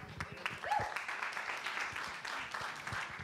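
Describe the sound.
A crowd applauding a team steadily, a dense wash of many hands clapping at once with a faint voice or whoop rising briefly in the middle.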